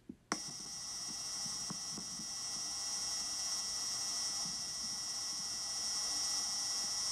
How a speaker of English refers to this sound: That's it. I mean, obviously, it's not like there's a band playing there or anything like that. But they caught a wind gust. They heard some wind. The sound of the rover sort of just moving along there.